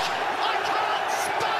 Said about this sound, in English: Absolutely unbelievable. The crowd are going berserk. It's awesome.